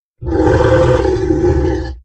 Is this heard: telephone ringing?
no